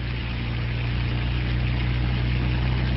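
A hovercraft's engine roars steadily as it rises from a beach, turns and speeds out across the waves, a loud propeller drone with a deep throbbing hum underneath, holding constant throughout with no voices.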